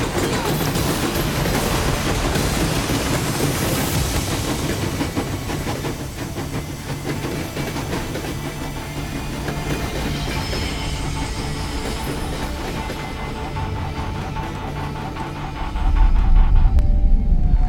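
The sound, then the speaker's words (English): A train rumbles steadily along the rails, loud, with a broad grinding roar and faint rhythmic clatter, swelling into a heavier low rumble near the end. “Just zip line to say, ooh, there's a train right there.”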